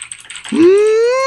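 Quick, light computer keyboard clicks patter for about half a second as someone types in a command to order free cake, then give way to a loud, sustained tone that slides upward and holds steady.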